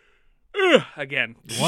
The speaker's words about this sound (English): Once again, the intro yawn. I know. It's not that I'm not interested in what we're talking about today. I'm actually very excited to talk about it, but it's just... I just woke up early, yeah.